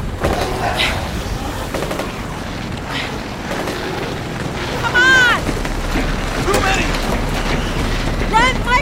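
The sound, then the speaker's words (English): Several sharp rifle shots crack out at irregular intervals over a rushing backdrop of wind and water, with tense voices shouting in between. “Give me the rifle!”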